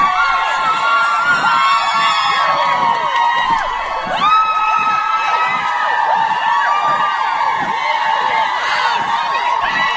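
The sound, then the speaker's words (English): A dense, sustained crowd of young college women screaming and cheering at high pitch along a roughly mile-long stretch of a marathon course in Wellesley, loud, with overlapping shrieks and whoops continuing steadily throughout. “And this is where the college girls go crazy for about a college girls go crazy. Mile stretch.”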